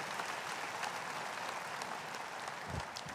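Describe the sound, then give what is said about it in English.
A church audience claps for Jesus Christ after a healing testimony, a dense, steady wash of applause that holds at an even loudness throughout, with no voices standing out. “Shall we clap for wonderful Jesus Christ?”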